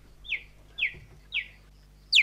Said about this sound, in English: Apparently, what I was told is that it's a cheetah doing a mating call. Whoa. So, presumably, wow. An adult cheetah. It was giving bird vibes.